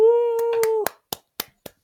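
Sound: clapping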